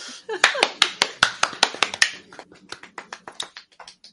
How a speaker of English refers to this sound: Well done. Everybody clap.